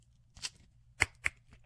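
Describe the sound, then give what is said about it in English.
A plastic Gatorlight sports drink bottle cap being twisted open: a short scratchy rustle, then two crisp, sharp clicks a quarter second apart as the seal breaks, with no talking. “And although I could use the Red Bull, I could also use the Gatorlight. Let's see what kind of sound this makes when I open it up.”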